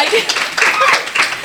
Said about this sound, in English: More applause.